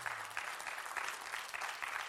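A crowd claps together as a clap offering to the Lord, a dense, steady wash of applause, with the sound swelling in regular pulses roughly every half second, fairly loud and with no voices over it.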